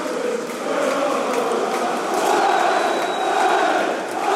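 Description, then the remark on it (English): A large crowd of away Wolves football fans cheers and chants in a stadium at a match against Manchester United, a steady roar of many voices without a break, as the Wolves players and coaching staff applaud them. “The Wolves players are in front of me with the coaching staff applauding the away fans.”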